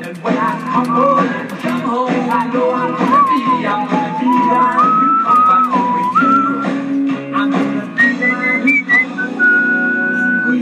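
A person whistles a rising, wavering melody over a loud, steady backing track of music, the clear whistled tune riding high above the band for the whole stretch.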